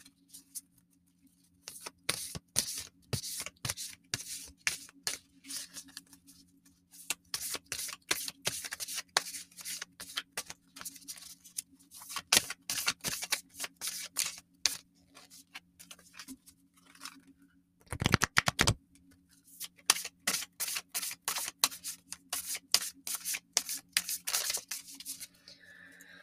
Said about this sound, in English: So I'm going to shuffle these cards and stop talking for a moment.